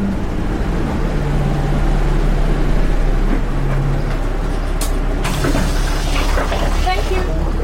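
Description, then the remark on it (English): Steady low engine rumble from inside a moving bus travelling to the Black Isle, a peninsula just north of Inverness, with a continuous drone and rattling, plus a brief hiss and clatter partway through, like brakes or doors. “And so I board a bus to the Black Isle, a peninsula just north of Inverness.”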